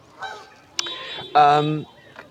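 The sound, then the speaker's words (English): Several honking calls from a large flock of geese among swans, three or four loud nasal bursts in quick succession with the longest in the middle, over a quiet background. “Look at all the geese.”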